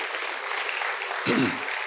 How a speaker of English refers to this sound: Big round of applause.